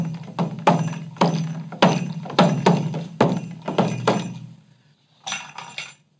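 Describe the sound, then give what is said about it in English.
A percussion bell struck about ten times in a quick, uneven rhythm, each bright metallic clink ringing briefly, then a short pause before a final softer cluster of strikes. No one speaks. “Depending on how you have it, the bell works. So this is more with the bell.”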